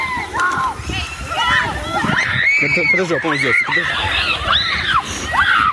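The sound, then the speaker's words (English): Children of a Girl Scout troop swimming in a lake at Huntsville State Park, north of Houston, Texas, shout and scream as an alligator charges toward them, over a steady wash of splashing water, several voices overlapping, loud and continuous throughout. “Children were swimming in a lake when suddenly an alligator appeared and started charging toward them.”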